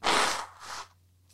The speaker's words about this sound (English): I gotta sneeze again. Achoo.